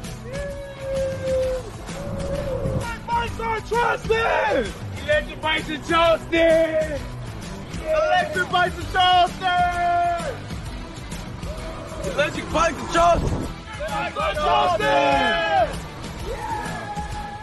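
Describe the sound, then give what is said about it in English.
A frenzied stadium crowd of Fighting Gamecocks fans in Columbia, ready for the kickoff, cheers loudly and without pause, with many overlapping yells, whoops and shouts that swell in repeated surges over a steady roar. “And so this frenzied crowd ready for the kickoff.”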